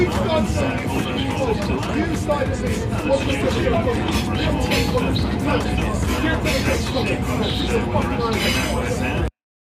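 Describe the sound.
A dense hubbub of many passengers chattering at once inside a rumbling London bus, loud and continuous, with overlapping voices and vehicle noise throughout before cutting off abruptly.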